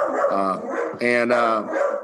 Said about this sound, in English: Wow, Red just kind of went crazy there. I had to pause it there because somebody's walking their dog. Outside, Red went a little crazy, but that happens.